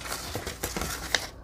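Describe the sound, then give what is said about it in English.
A blade scrapes steadily through paper along a straight sharp edge, trimming it to size, a soft continuous rasp broken by a few sharper ticks and a final click, with no one talking. “Probably has some other official name and I know not of it, but it has a very nice sharp edge and I can cut alongside of it.”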